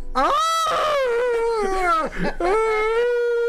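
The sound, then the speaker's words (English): A person lets out a long, loud wavering howl, imitating an animal, with sustained pitched wails that rise and dip before a brief break and a second drawn-out howl. “Howling. Howling at the moon.”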